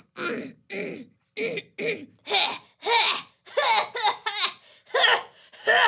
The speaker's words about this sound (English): She's coughing up the last bit of Ander.